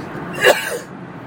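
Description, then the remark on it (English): A single sharp sneeze bursts out, a quick explosive puff of breath that fades into a brief exhale and then quiet. “Hang on a minute, I'm going to sneeze.”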